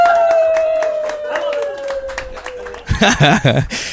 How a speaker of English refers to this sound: How about a huge round of applause and a big smile for